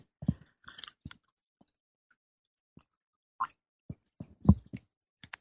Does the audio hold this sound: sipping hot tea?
yes